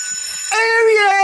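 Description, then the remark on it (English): A long 25-second school bell rings in a loud, steady tone. It shifts partway through from a thin, high ring to a fuller, lower-pitched ring that holds without a break. “Maybe don't use a big long 25-second school bell, then, you jackass.”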